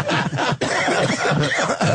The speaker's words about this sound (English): Oh, Jesus, how do you cough into those hands? It's not really helping. I know, the germs go right around them.